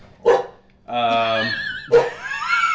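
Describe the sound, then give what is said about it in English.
A sharp dog bark, then a drawn-out whining howl and a second bark, all loud, with no talking over them, voicing the Countess, who has gone insane and now thinks she's a dog. “Countess has gone insane, and now thinks she's a dog.”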